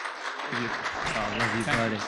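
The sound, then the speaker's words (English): A church audience applauds steadily for their pastor in a morning service as he comes up, a dense wash of clapping that fills the whole moment, while a voice calls out over the top partway through. “So as he comes up, let's give him a big thank and a big hand clap for our pastor.”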